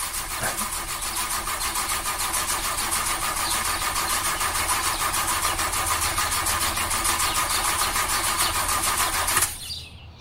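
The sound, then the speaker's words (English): A car engine cranks steadily with a rhythmic, grinding whir for about nine seconds, never catching, then cuts off abruptly into near silence. Fairly loud, with no voices. “All right, let's try my car one more time.”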